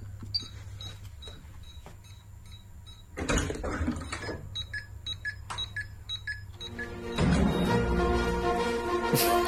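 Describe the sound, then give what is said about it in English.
A home burglar alarm's high electronic beeps pulse in a steady rhythm, broken by noisy bursts, before a louder, dense musical passage, a song from a film, swells in and blends with the alarm tones toward the end. “she's mixed her burglar alarm noise with the actual song from Robin Hood”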